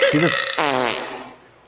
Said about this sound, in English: Now that you have the soundboard back online, you can give us some farts and shit. I could find the farting. Do the fart.